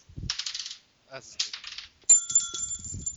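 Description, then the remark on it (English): A small hard die clatters and rattles, bouncing a few times, then falls into a bowl with a bright ringing tone that lingers as it settles, fairly clear. “One of my dice fell into a bowl.”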